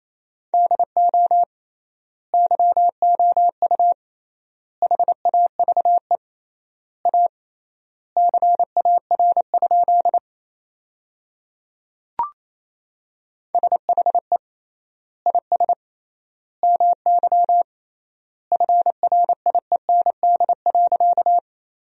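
Morse code sent at 28 words per minute as a steady mid-pitched tone in quick bursts of short and long beeps, spelling sentences built from the top 300 words with triple word spacing, grouped into words with wide gaps between them, plus one brief click near the middle. No one speaks.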